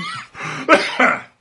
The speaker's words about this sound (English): Oh, excuse me, coughing.